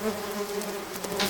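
swarm of bees buzzing

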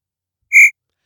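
crickets chirping sound effect

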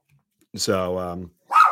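dog barking

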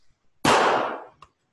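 gunshot sound effect

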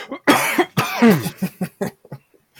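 cough

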